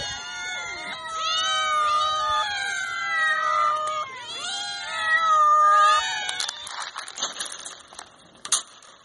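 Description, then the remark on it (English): A cat meows repeatedly, a series of long, wavering, fairly loud cries over about six seconds, followed by a few seconds of scattered crackling and rustling noise. “with 61 points and 7 people who voted for it, the cat.”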